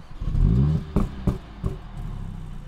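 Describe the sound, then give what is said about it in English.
A car engine, started with the shift paddle held in, cranks and catches with a rising rev, followed by a few sharp clattering bursts before settling into a steady idle rumble. “So if you hold in the shift paddle while you're starting it, it starts like this.”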